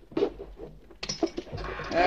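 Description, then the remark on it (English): A wooden chair in an office creaks as someone sits down and settles into it, with some shuffling and a drawn-out, squeaky groan that rises near the end, fairly loud. “This chair could use a little oil.”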